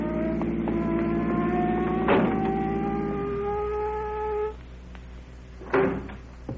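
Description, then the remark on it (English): A police officer's car engine hums steadily, then its pitch drops and it goes quiet as the car pulls up, followed by a solid thump like a door closing. “Look at that car coming up here.”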